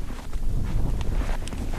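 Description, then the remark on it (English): Wind buffeting piezo microphones on a suit: a steady, low, rumbling roar with gusty fluctuations, plus a couple of faint brief taps. No voices. “This is the wind hitting the piezo microphones on my suit.”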